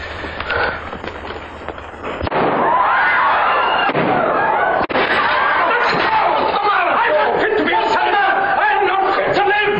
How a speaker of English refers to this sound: That was a gunshot as Claude Rains tried to kill himself in the cloakroom.